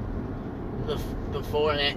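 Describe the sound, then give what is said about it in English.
An old truck engine idles with a steady, low rumble for about two seconds, and a short rising voice-like tone rises over it near the end. “I would have to get rid of this thing. The old truck power.”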